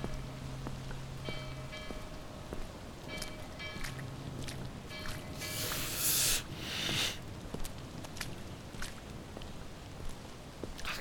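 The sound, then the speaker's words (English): Heavy rain pours down steadily in a dense, hissing wash, swelling into a louder rush for a moment partway through before settling back. No one speaks. “Blasted rain.”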